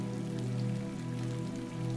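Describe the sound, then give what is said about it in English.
Steady, continuous rain falls on the landscape behind the windows of a loft, pattering evenly throughout, soft and muffled, with a low sustained hum beneath it and no voices. “You pause to look out onto the lofty space and the rainy landscape behind the windows.”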